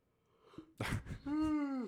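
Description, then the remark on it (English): A person yawns: a sharp breathy intake of air, then a drawn-out voiced groan that holds steady and sags in pitch as it fades. “Sleepy boy. I got to yawn.”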